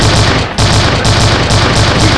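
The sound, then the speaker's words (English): Loud, rapid gunfire sound effects fill the whole stretch, a dense rattling barrage with a brief dip about halfway before the shots resume at full volume. No one speaks. “Some gunshots.”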